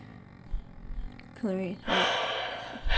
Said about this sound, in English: Clearing your throat.